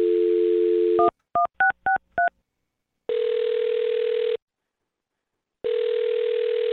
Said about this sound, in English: Well, I'm going to dial her phone number right now and find out why she's not calling you back, okay? Great. Here we go.